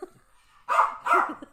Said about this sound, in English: Barking dogs